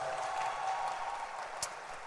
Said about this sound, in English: Let's appreciate him with a hand clap.